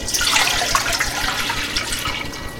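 Milk pours steadily into a pot, a continuous splashing, gurgling stream that stays fairly loud for the whole moment, tapering slightly at the end, with no voices.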